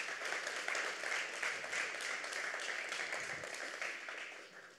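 A church crowd gives a round of applause for a youth volunteer called up to help preach the sermon, clapping steadily for about five seconds, a dense, even wash of many hands that holds strong and then begins to fade toward the end.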